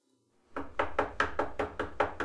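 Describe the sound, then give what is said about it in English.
Rapid, insistent knocking on a door by the police: about eight loud, evenly spaced raps in quick succession, after a brief moment of silence, with no voices. “Please open up. Oh, shit. I told you I was gonna call the police. The police are at your door.”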